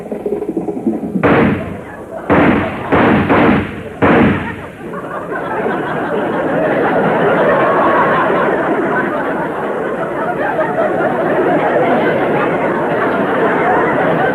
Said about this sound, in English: Hey, that sounded like gunshots. Yeah, they must be making a cowboy picture.